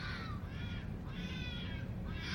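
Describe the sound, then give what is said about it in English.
A fox screeching: three harsh, raspy, drawn-out shrieks in quick succession, each with a strained, rough pitch, over a steady low rumbling background. “I remember I found a very particular kind of fox screech to make up the screech of kind of a demonic, spooky presence in Shit Your Pants in that episode.”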